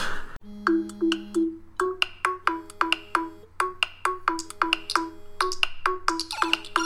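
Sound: mobile phone ringing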